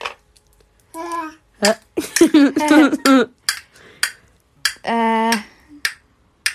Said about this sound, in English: You clapping?